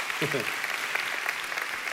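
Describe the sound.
An audience claps their hands together in a dense, steady wash of applause, with a brief voice rising over it near the start.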